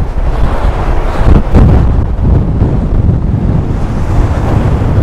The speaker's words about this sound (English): Oh man, this wind is just as bad here as it was down there.